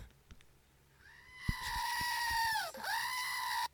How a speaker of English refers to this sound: My sister bought me a screaming goat.